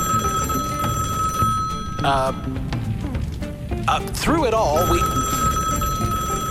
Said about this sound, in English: When did we get a phone? Okay, I'll bite.